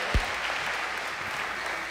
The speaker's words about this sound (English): Would you give a round of applause to Jesus? If that was for me, that's okay. I said give a round of applause to Jesus today. There we go.